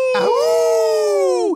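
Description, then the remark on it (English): A person imitates a wolf, letting out one loud howl, holding a steady, drawn-out tone for over a second before the pitch sags and cuts off. “And my howl is getting much better than your howl.”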